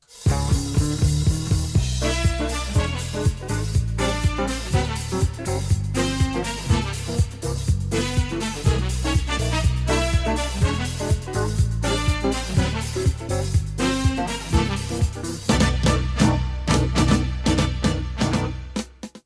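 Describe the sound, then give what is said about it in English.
Bright, brassy game show theme music plays loud and upbeat, with punchy horn stabs, driving bass and a quick rhythmic pulse, running continuously for the whole stretch with no one talking. “Sing that theme music in my sleep now.”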